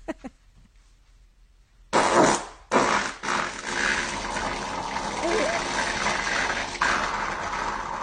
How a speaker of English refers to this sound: That is not real. Sure seemed like it was. Did we analyze that audio? Have we done the... have we done a forensic audit on the... that fart clip yet? Checks out.